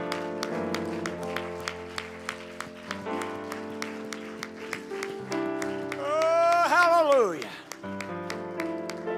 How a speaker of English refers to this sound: The Bible said, make a joyful noise unto the Lord. Clap your hands with all of your heart.